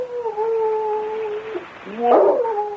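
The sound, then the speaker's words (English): A dog howls in a long, steady, mournful tone that wavers slightly, then breaks into a louder, rougher rising howl near the end. There's no talking. “But just the same, a dog. That's what I heard.”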